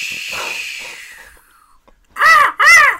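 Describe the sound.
A person imitates a seagull with two loud squawking cries in quick succession, coming right after a stretch of soft, breathy hissing.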